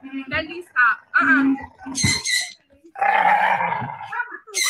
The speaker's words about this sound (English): So for those of you who are just listening, this is a video of an adorable, an absolutely adorable doggy, an English bulldog named Fendi. And he's cute, all right. She's cute, all right.